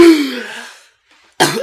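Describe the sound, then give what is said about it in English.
A voice mimics a woman's coughing fit as she coughs up blood and black mucus: one loud, rasping cough that trails off, a short pause, then another harsh cough bursts in. “And just she's coughing up blood and like black mucus, and there's this woman.”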